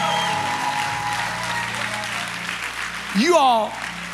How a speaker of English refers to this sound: Give him one more clap offering. Go ahead.